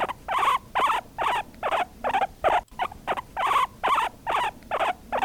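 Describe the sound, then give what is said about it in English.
A guinea pig squeaks in a rapid series of short, high chirping calls, about a dozen bursts in quick rhythm with a brief pause midway, fairly loud and with no talking. “And that is a guinea pig, and anybody who has one as a pet probably knows that sound.”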